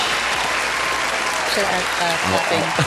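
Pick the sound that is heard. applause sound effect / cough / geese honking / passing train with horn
applause sound effect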